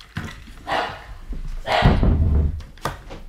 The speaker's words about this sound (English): The dogs are barking. No, I'm so sorry. Went wild.